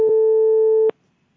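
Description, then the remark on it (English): A single steady electronic ringing tone over a phone line lasts just under a second, then cuts off abruptly into near silence. It is loud, with no voices. “That's the phone ringing somewhere.”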